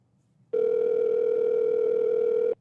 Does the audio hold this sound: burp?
no